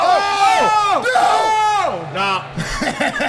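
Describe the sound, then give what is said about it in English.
Many voices yell and shout at once in a loud, sustained burst, their pitches rising and falling in overlapping waves, with a brief dip before the clamor surges again. “Everybody yelling about it.”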